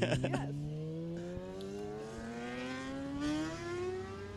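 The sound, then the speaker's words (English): A motorcycle engine revs and accelerates past, its droning pitch climbing steadily over several seconds, loud, with a brief sputter at the start. “It was a bike? And that was a bike.”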